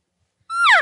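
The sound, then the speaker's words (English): A single soft elk cow call blown on a call: a brief, nasal, high-pitched mew that slides downward in pitch, heard alone after a moment of silence. “So those are the two that I typically use, but mine's a little bit softer on the cow call.”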